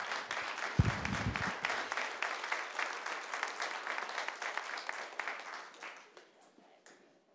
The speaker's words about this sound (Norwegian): Kom, og vi må gi han en skikkelig god klapp.